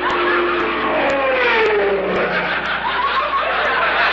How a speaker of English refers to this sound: Look, there's a falling comet. Look. That's an airplane.